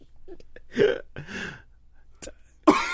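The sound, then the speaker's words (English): A coughing fit brought on by a drink: several harsh, irregular coughs and throaty bursts break out one after another, with brief gasping pauses between them. “Your drink is making me cough.”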